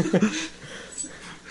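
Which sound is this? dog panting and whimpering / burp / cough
dog panting and whimpering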